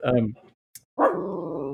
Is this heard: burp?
no